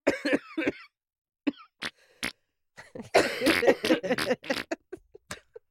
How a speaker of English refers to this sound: I was not tooting when I was coughing.